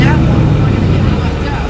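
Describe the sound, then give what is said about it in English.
A truck engine idles in downtown Modesto, a steady, loud low rumble with a throbbing, uneven texture that holds constant throughout the short stretch. “Hopefully that truck isn't running for long.”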